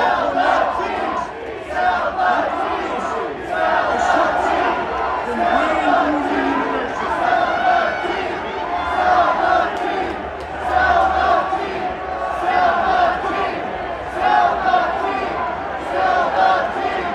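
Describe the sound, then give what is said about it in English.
A large stadium crowd of Oakland fans chants in unison at team owner John Fisher, telling him to sell the team, a loud, steady roar of many voices rising and falling in a repeated rhythmic pattern that continues throughout. “And now here's the crowd in attendance when it comes to Oakland, considering those great fans in Oakland about to lose their team.”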